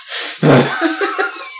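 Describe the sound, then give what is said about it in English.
A voice mimics heavy breathing and sniffing: a hissy intake, then a loud, forceful blast of breath, followed by a few shorter voiced huffs, all prominent. “While he breathes heavily and sniffs.”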